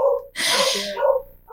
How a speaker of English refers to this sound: Sorry about that. My dog's going nuts in the background.